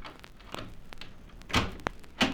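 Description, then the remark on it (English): A door being opened by someone coming to answer it after the bell is rung: a couple of soft clicks from the latch, then a few sharper knocks and thumps spaced about half a second apart, with no voices. “Isn't that someone coming to the door now?”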